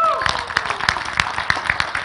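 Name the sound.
audience clapping hands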